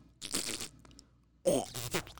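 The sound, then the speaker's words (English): Two wet, sputtering fart noises made by a voice, the first buzzy and steady, the second louder and more forceful after a short pause. Clear, with no talking. “I literally impersonate farts all the time.”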